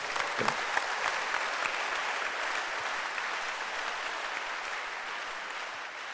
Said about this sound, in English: Can you clap your hands for blessings?